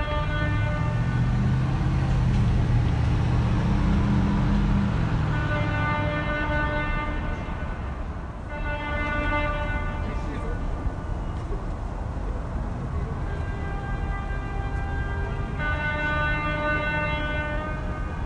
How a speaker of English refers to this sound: Can you hear the cars honking?